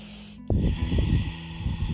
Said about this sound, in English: So once you've got that, just start to rotate your torso to the right. Gaze over the back of your shoulder and just keep breathing in and out through your nose.